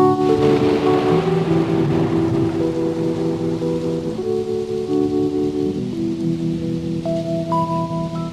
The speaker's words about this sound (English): Thunder, bring in the thunder.